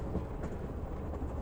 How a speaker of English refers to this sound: Envision this. Tonight, you're about to go on an overnight train ride through Europe.